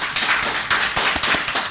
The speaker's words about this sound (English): I'm applauding myself. I'm sorry. You should applaud yourself. Yeah, you definitely should.